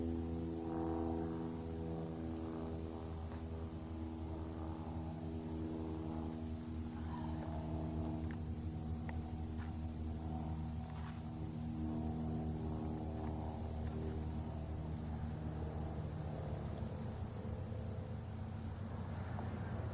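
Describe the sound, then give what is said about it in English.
A small propeller plane drones steadily overhead at 12:40 p.m., its low, buzzing engine hum holding loud and constant throughout with no voices. “We've got a little smaller plane over here.”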